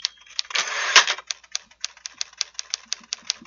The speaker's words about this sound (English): We're playing this for those who have no idea what a typewriter is.